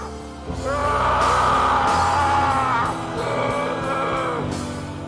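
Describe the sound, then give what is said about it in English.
A person screams loudly and continuously in a film scene, a long sustained wail that rises and wavers over several seconds, with sharp percussive hits landing underneath and no other voices. “But my screaming in this scene will continue for another 45 seconds.”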